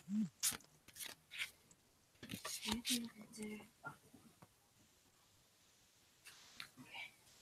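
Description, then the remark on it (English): Quiet playing cards being shuffled: a run of crisp papery flicks and rattling bursts during the first few seconds, a lull, then a couple of softer riffles near the end. “I'm shuffling.”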